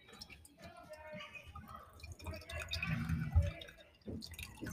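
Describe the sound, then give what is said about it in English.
Milk pours steadily into mugs, a soft burbling and trickling that swells for a couple of seconds before tapering off, with faint voices murmuring underneath. “Pouring the milk over these mugs.”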